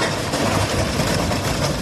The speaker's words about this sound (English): Wow. That train's only going like one.